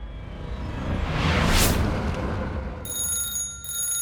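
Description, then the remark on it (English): A broad whooshing swell rises and fades, then a bright telephone ring begins near the end, a steady metallic trill that briefly pauses before continuing. The phone rings in a house in the middle of the night. No one speaks. “The phone rang out and broke the silence at Howard Hughes' house.”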